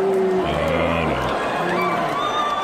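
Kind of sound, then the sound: crowd, crowd booing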